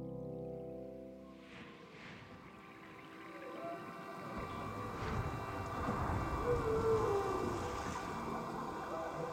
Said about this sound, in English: When you listen to the five songs back to back, they run seamlessly into each other through these waves and ocean and whale sounds.